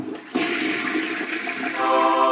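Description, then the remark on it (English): A toilet flushes, a sudden rushing swirl of water that stays loud and steady, then turns into a higher, gurgling refill tone near the end. “We've had a good poop before our shower.”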